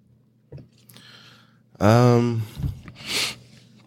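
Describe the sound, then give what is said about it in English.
Heavy breathing: a soft breath, then a loud voiced huff or grunt, followed by a sharp, airy snort-like exhale, all with no talking. “He's just over there breathing.”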